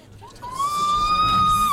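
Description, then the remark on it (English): A woman lets out a long, high, piercing scream that rises and holds steady for over a second, loud, over the murmur of a crowd gathered around the lift doors of a building. “The source of the screams”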